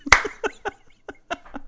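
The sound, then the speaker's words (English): A run of sharp hand claps into a microphone, the first one loud and hard, followed by several lighter, uneven claps over about a second and a half, with faint laughter mixed in. “Sorry, I didn't mean to clap in the microphone, but that was funny.”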